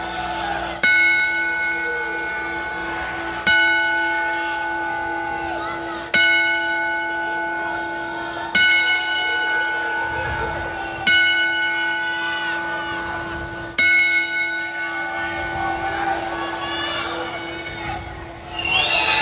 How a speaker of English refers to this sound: So from us here at the Rundown family and our small corner of the wrestling world, we would like to take a minute to give Big Woody, Elwood Apt, our 10-bell salute.